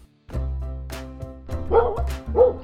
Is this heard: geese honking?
no